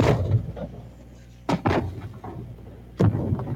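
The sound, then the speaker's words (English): Sharp, loud bangs burst out at irregular moments, two close together and then a third after a pause, each with a brief crackling tail over a low, steady rumble. “That is a firework happening right there.”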